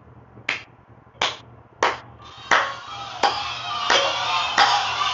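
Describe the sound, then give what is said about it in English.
Sharp hand claps land in a steady, even rhythm, about seven in all, with a fuller crowd-like wash of clapping and noise filling in between the later beats. “Clap for me.”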